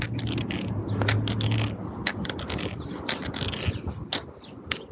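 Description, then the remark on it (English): A steady rumble of parallel traffic on a busy road runs throughout with a low droning hum, overlaid by sharp, irregular clicking taps that stand out above the continuous vehicle noise. No one speaks. “I don't have a chirp chirp, but I don't need one because I've got a crap ton of parallel traffic here. You should be able to hear it on my right.”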